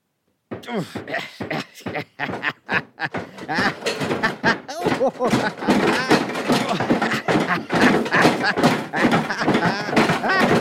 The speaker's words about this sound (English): But fortunately, I have with me my trusty hammer, which viewers will remember from... it's not from a program, actually, no. I've just got a hammer.